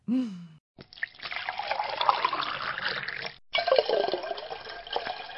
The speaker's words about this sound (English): That's a lot, don't you think? Well, I don't want to drink more than 2 glasses of wine a day. But you poured half of the bottle into your one glass.